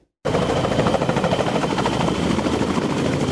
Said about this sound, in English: It looks as though the Marine Corps CH-46 Sea Knight helicopter is headed for retirement.